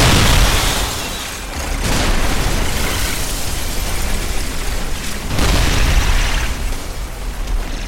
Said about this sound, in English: He made sure to make himself known, destroying parts of the structure that responded with fire and voluminous explosions.